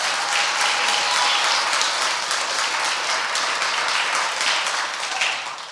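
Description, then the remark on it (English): A crowd applauds steadily for several seconds, a dense, continuous wash of many hands clapping at once that holds an even loudness throughout, with no voices standing out. “Can we clap about that?”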